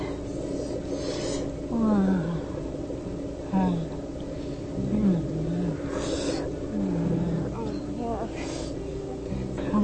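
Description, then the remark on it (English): A woman's voice lets out a series of short grunts and drawn-out moans, about six in a row at uneven intervals, over a constant rushing background noise. “Grunting female.”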